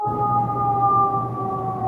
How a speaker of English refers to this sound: Ambulance? You guys downtown, right? Yeah, that happens. Yep. That happens. I should just ignore it.